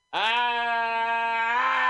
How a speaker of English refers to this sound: So, I just want to scream about it. I mean, I scream sometimes on the show, and there's no... I'm going to scream a little bit. I'm not going to go into the microphone.